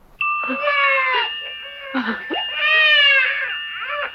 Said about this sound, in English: A child is crying in the background.